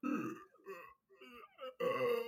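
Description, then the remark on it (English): A person who cannot burp tries to burp, forcing out a short run of croaky, voiced burp sounds in several choppy bursts, ending in one longer, louder belch-like groan. “On the phone, I think it almost sounds like a burp if I go.”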